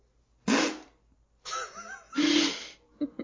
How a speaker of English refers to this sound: Yeah, we love that fart noise. What the fuck? We love that fart noise.